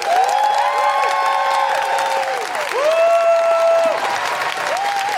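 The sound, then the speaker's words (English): A crowd applauds loudly and steadily for several seconds, with scattered whoops and cheering voices rising over the clapping throughout. “Applaudez, s'il vous plaît”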